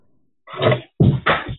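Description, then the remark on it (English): A coffee cup is knocked over and clatters onto the floor: a scraping knock followed by two quick, heavy thuds and a brief rattle, fairly loud and with no talking. “And there I knocked my coffee cup over on the floor.”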